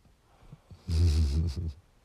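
A single gentle snore, a low rumbling, raspy breath lasting just under a second with a slight trailing rattle, heard alone against quiet background.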